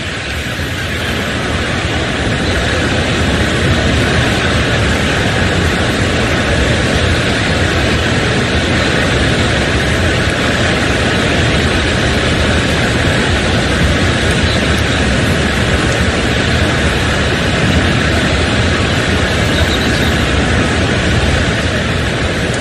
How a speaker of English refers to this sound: Folks, that was the audio, and I wanted you to hear the pause there, that long pause. That was the stadium. You could hear a pin drop. Tens of thousands of people in that stadium